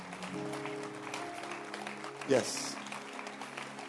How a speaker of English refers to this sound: Clap your hands. Oh, keep clapping your hands for them. Keep clapping your hands for them. Don't stop clapping. Oh, clap louder to encourage them.